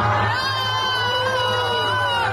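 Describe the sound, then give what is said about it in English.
An angry concert crowd in the nation of Georgia, reacting to a Russian man brought on stage, shouts and roars together in a sustained, unbroken wall of voices, with high yelling tones rising above a low rumble for a couple of seconds. “Yeah, the crowd got angry.”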